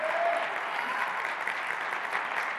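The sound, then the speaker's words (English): Steady, dense applause from a church audience at a morning service, applauding fathers, a continuous wash of many hands clapping at an even, fairly loud level throughout without any voices standing out. “And so anytime you find your father's got vision and he speaks to you about your future and he can speak life into you, you need to applaud him this morning because you've been given a good card.”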